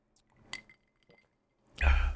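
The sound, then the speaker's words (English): A single light clink of glasses touching in a toast, followed a moment later by a loud breathy exhale. No one speaks. “Cheers. Yeah. Cheer for that.”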